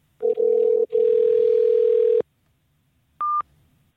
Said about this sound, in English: Your phone rang. You better answer it, motherfucker.